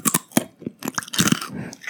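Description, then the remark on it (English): Loud crunching of someone chewing food, a rapid series of sharp crisp bites and grinding chews with brief pauses between them, no talking. “Another nice crunch.”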